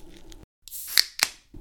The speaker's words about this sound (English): Bruv, we're going to have a little break here because I need to blow my nose and shit.